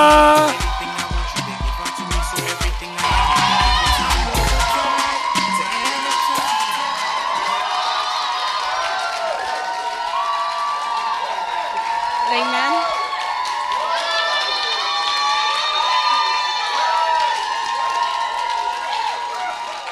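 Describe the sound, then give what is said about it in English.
An audience claps and cheers loudly for about twenty seconds, welcoming the host's sister to share her testimony, with dense clapping at the start and a steady roar of shouts, whoops and excited voices throughout. “Okay, well, I want you to clap your hands and welcome my sister”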